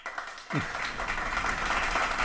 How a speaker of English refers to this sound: So. I want to give him a clap for staying with us, even though he's a pastor.